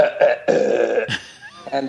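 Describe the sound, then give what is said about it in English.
A run of loud burps after lunch, pitched like musical notes to burp out the Fifth Symphony: two short bursts, then one long drawn-out belch, followed by a few more tonal gurgles, tapping out the melody. “They have lunch with Vienna sausages, and they, as they're done with lunch, they start burping, and they burp the notes from the Fifth Symphony.”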